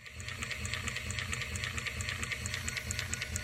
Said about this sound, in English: And it's chewing over 260 times per minute. So it's actually quite fast and noisy. Because I was eager to find out more how awful does it sound, I asked Alexis to record the chewing language of his robot.